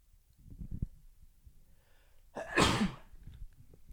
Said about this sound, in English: And I think I have a sneeze.